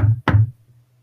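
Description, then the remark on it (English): Two heavy knocks on a trailer door at 2 a.m. out in the woods, the second sharper and more forceful, followed by a low fading resonance. Fairly loud, with no voices. “And all of a sudden, there's this knock on the door.”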